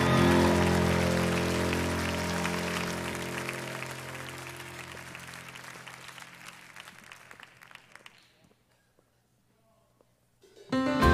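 A standing church audience applauds performers steadily with dense, crackling claps over a low sustained musical tone, gradually fading out to near silence before a brief burst of sound at the end.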